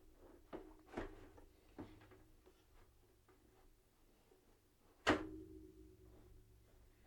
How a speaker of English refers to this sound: My little drawer got stuck there.